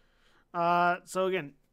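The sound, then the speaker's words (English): A voice imitates a stone door, guarded by statues, sliding open as someone steps into a room: two sustained, buzzing vocal tones separated by a brief hissy breath, the second slightly shorter and wavering in pitch. “This is a sound as the door slides open, and he steps into the room.”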